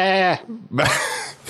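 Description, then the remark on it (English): A voice imitates a sheep's bleat: a loud, nasal, wavering "baa" held for under half a second, followed by a second rougher, buzzy bleat. “Or I guess that's a sheep.”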